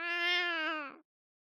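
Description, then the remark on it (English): A single drawn-out cat meow, loud, holding a steady tone for about a second before cutting off abruptly into silence. “a cat, which genuinely had its own apartment in Trump Tower.”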